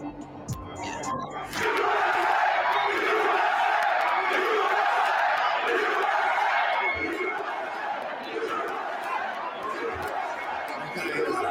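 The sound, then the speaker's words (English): A loud crowd roars and shouts continuously, a dense wall of many voices yelling at once that stays intense for about ten seconds after a brief quieter opening. “Like, if you hear how loud that fucking crowd is?”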